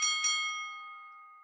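A boxing ring bell strikes twice in quick succession, clear, its metallic tone ringing on and slowly fading with no voices around it.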